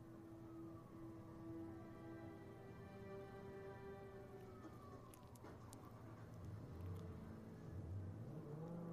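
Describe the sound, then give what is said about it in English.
A car engine drones steadily, its pitch sliding and climbing as it accelerates, with a constant hiss of road or rain noise underneath and no voices. “Seeing him drive that car was weird.”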